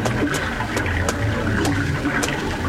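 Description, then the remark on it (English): Spring water trickles steadily, a continuous wet splashing flow with small bright drips and plops popping out every half second or so, with no voices. “Well, this spring is a good place to drink and rest, too.”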